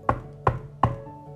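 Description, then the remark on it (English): Three firm knocks on a wooden cottage door, evenly spaced, each with a short hollow ring that lingers briefly before fading into quiet. “Goldie then spotted a cottage and knocked.”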